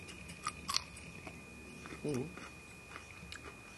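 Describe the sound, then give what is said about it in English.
A crisp crunch of biting into a pickle: a few sharp crackling snaps, then a short pause and a brief murmured voice over soft chewing. “I think the only best way to demonstrate this, you know, is to listen up carefully. You mean the luxury of them? Of the crunch.”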